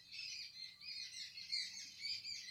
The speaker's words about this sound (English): Some nice birds in the background.